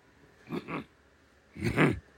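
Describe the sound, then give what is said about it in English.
Someone clears their throat twice: a short, gravelly double rasp, then a pause and a louder, longer second one, with no talking around it. “Let me clear my throat and explain my situation.”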